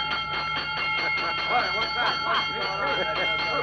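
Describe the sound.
A fire bell rings continuously in front of a firehouse with a steady, high metallic clangor, while voices murmur and call out over it partway through.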